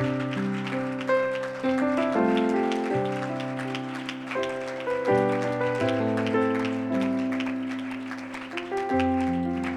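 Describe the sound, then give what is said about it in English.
A church audience claps steadily as a hand clap of thanksgiving to the Lord, a dense crackle of many hands over sustained organ or keyboard chords that shift every second or two, the clapping continuous and fairly loud throughout. “Can we just give the Lord a hand clap of thanksgiving?”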